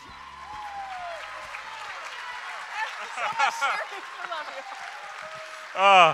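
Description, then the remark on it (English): An audience at Bethel Atlanta applauds steadily, a dense wash of clapping mixed with scattered cheers and voices, closing with a louder shout right at the end. “Next time, clap a little bit more gently, and then we'll be okay.”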